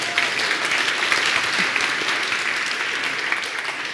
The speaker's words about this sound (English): I would never imagine that someone claps when I'm running.